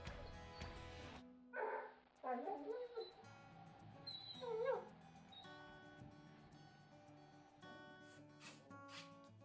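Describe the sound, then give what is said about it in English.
A dog, Charlie, whimpers and lets out a few high, wavering yips while being coaxed to walk past a cat and come downstairs, short plaintive bursts over faint background hum, with no one talking. “You've got to learn to walk past the cat.”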